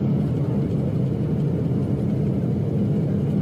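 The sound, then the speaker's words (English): A steady, loud low-pitched roar of an airplane engine drones without a break for the whole few seconds, from a video of a plane whose engine blew and dropped debris on Broomfield, with no voices or other sounds. “Tell me what the one thing you noticed missing from this video, besides the engine.”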